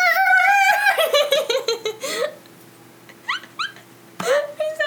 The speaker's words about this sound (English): Squeaking toy.